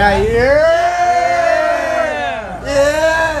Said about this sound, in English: Now we all just gotta start yelling. Just chilling. We all just gotta start yelling.